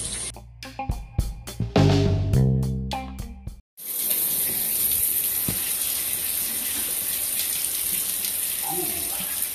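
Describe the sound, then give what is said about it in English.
After a few seconds of brief tonal sounds and a short silence, a cold shower bursts on in the morning and runs loud, a steady hiss of spraying water continuing to the end. “this is Cold Shower Talk. I'm about to jump in, so let's see what jumps out.”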